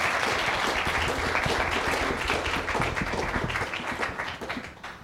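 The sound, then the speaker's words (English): An audience applauds to welcome a guest, with loud, dense, steady clapping that holds strong for several seconds, then gradually thins and fades toward the end. “one more round of applause and welcome her here?”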